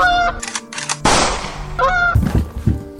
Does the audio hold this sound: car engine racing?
no